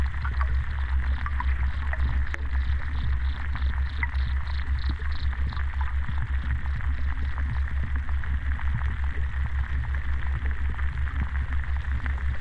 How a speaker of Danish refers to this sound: højtalere, som er forbundet til en hydrofon, der er nede i en sø, som ligger mellem de to bunker. Og til folk, der ikke ved, hvad en hydrofon er, kan du forklare, hvad det er? En undervandsmikrofon. Og så den opfanger de lyde, der er under vandet.